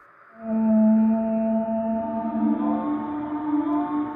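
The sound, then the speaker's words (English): An eerie, whale-like moan, felt to come from below, rises in and holds for several seconds, a loud, steady low tone with layered harmonics that drifts slightly upward in pitch partway through, with no voices. “It sounded... sounded like... like a whale.”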